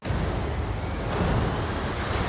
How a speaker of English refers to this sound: we open on a ship above the sea where Prince Eric is having some difficulty in a storm